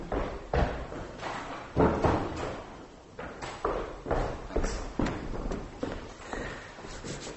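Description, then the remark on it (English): Heavy footsteps thud across a hard floor at an uneven pace, fairly loud, with a door pushed shut among the impacts, as someone closes a door against a banging noise. “So does anyone know what that banging is? I'm just going to close this door.”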